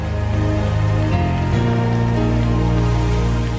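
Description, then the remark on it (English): An audience claps hands together for about a minute in celebration, a steady, dense wash of sound blended with sustained keyboard chords that shift twice early on. No one speaks. “Take 60 seconds. Do what the Bible says. Clap your hands, all ye people.”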